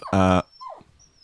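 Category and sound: animal, dog whimpering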